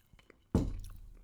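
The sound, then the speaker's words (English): A sip of whiskey sour: near silence, then one abrupt wet gulp with a low, muffled tail fading out over about half a second. No one speaks. “But I'm currently drinking whiskey sour. And I'm going to take a sip right now because I'm parched.”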